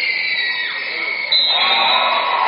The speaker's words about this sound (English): He's going to come out to a round of applause. Boy, the Vesterberg crowd is just really supportive of this team.